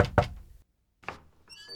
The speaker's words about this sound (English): Percy nearly skipped back over to 409, knocked, and opened the door.